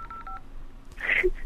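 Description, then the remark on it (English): A quick run of four or five short cell phone keypad tones beeps as a number is dialed on a cell phone, followed moments later by a brief brighter electronic chirp. No one speaks. “I'm gonna dial it on my cell phone.”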